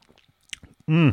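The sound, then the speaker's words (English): Soft wet mouth sounds of someone sipping and swallowing cheap California Malbec box wine, a few small slurps and clicks, ending in a brief satisfied voiced sigh. “let's have a sip of that reading wine before we do chapter 18”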